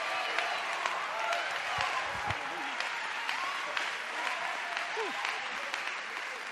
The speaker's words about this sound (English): And if you know Jesus to be your Savior, if you know Him to be your healer, if you know Him to be your waymaker, don't worry about how you feel, but you clap your hands, because you know God is a great God.